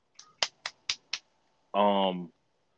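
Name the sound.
hands clapping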